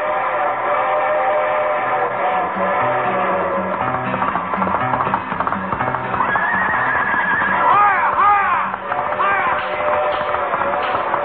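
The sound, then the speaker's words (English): A westbound limited train bound for California rumbles steadily past on the left, loud, as a horse whinnies partway through with shrill rising and falling cries over the constant rolling noise. “The train which is about to pass us on the left is the westbound limited for California. The Pony Express.”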